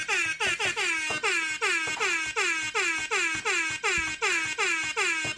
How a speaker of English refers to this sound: Got some extra honks for all you chain macers out there.